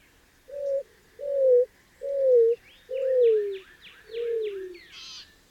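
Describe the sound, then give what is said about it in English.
A greater roadrunner's mournful cooing song, sounding from a patch of mesquite and creosote bushes: five low, hollow coos, each slightly longer and dropping in pitch, spaced evenly, while a smaller bird chips and trills brightly above. “It's the mournful song of a greater roadrunner, sounding off from a patch of mesquite and creosote bushes.”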